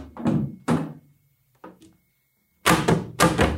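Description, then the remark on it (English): A broken chair being sat on thunks and wobbles in a handful of irregular knocks, with a softer bump in the middle and two loud heavy clunks at the end. No one speaks. “By the way, I'm just sitting on a broken chair right now. Look at this fucking chair.”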